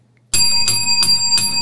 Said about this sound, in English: She wants to ring the bell.